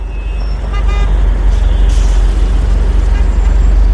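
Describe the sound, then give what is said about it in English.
Dense road traffic rumbles steadily, with engines droning low, a few brief horn toots and a hiss of air brakes cutting through the continuous din. “And instead, what we got was traffic.”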